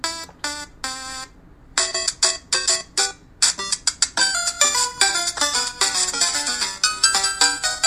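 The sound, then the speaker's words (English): A timer alarm goes off, loud electronic beeps chirping in a quick, bouncy melodic pattern that repeats steadily for several seconds, with no one talking over it. “That's all I gotta say, because we're out of time, and I'm sticking to the timer.”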